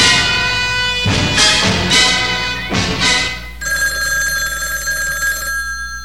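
A telephone bell rings loudly in several quick metallic bursts, then gives way to a steady, high, buzzing tone that holds for a couple of seconds before cutting off. No one speaks.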